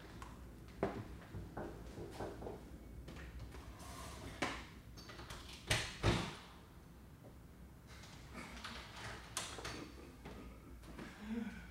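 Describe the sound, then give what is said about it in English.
A door being opened and shut in answer to knocking by a five-year-old child who then ran off, with a few sharp clicks and soft thumps spread over several seconds against a quiet indoor background and no one talking. “Hang on a second. Knocking on my door.”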